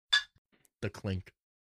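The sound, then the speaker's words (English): A single bright, ringing clink of glass against glass rings out briefly, then after a short pause a voice exclaims loudly. “All right, let's try this. The clink.”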